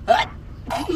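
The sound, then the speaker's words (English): A single sharp sneeze bursts out, loud and breathy, followed by a short pause and another brief voiced sound. “Anywho, before I was interrupted by a fucking sneeze.”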